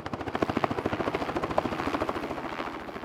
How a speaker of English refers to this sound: That's the sound of a helicopter whizzing around above us, ready to test the local sheep for pneumonia and other indicators of herd health.